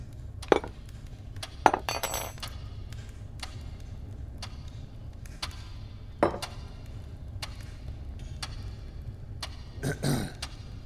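Forks clink against ceramic plates in a scattered, irregular series of sharp taps, some single and a few in quick clusters, over a low steady room hum with no talking.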